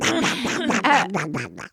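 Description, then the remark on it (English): A quick run of about six or seven nasal duck quacks, fairly loud, tumbling one after another with almost no gaps before stopping abruptly. “Excuse me, here come the actual ducks you're going to be reading your lines alongside with.”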